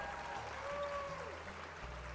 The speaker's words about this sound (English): So basically, I just put. I found a lot of clapping and a lot of cheering